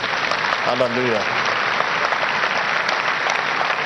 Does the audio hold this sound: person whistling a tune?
no